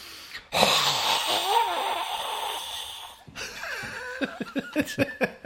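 A long, forceful inhale with a hoarse, wheezy rasp, followed by a quick series of sharp, rhythmic, loud breath pushes: a person demonstrating a diaphragm breathing exercise that combines isometrics with breathing.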